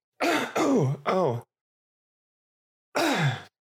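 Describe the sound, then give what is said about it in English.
Three quick throat clearings in a row, voiced and groaning with a falling pitch, then a short pause and one more clearing. No talking. “God, I'm like constantly clearing my throat.”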